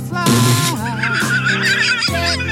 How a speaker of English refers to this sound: Let's hear birds.